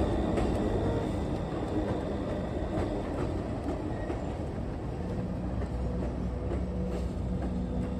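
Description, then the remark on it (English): A freight train rolls steadily along the tracks, a loud continuous rumble with faint metallic clicks and a thin squealing hum running through it, no voices present. “They called him the railroad killer, and for more than a decade he crisscrossed the US by freight train, jumping off at random and bludgeoning his victims to death with whatever blunt object he could find.”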